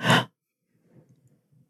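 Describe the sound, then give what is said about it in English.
A single quick, breathy gasp, sharp and brief, followed by a second or so of faint, low murmuring breath sounds. “That light gasp that I just did kind of caught on the audio.”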